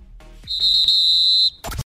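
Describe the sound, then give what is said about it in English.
A single long, loud blast on a referee's whistle ending a football match, shrill and steady for about a second, followed by a brief burst of noise. “If this were a real bit of extra time, this is when the ref will blow the whistle because it's finished.”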